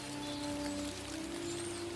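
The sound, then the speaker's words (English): A light drizzle patters softly and steadily throughout, a quiet, even hiss of fine rain with a faint sustained hum running underneath. “It's wet down to a drizzle now.”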